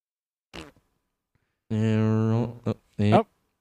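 A loud, buzzy fart sound stretches out for nearly a second, with a brief sputter before it and two short blasts after.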